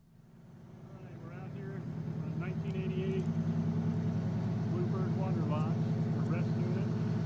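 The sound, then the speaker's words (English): An old 1988 bus, found in Florida after sitting for five years, idles with a deep, throbbing diesel rumble that swells over the first couple of seconds and then holds steady and loud, with faint indistinct voices in the background. “Let me know if you can hear the sound on this.”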